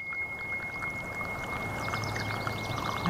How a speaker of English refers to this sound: And inspired by that trickling brook and the North Lake trail walk